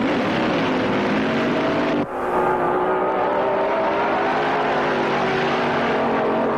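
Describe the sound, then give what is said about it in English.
A nitromethane-fueled dragster engine roars loudly and steadily down the track, a dense, raspy blast with a brief dip partway through before the howl resumes. No one speaks. “The big dragsters are loaded with high-energy nitromethane fuel.”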